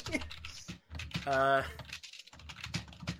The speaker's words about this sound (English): Someone's getting a head start on the discourse by the sound of it. There's furious typing.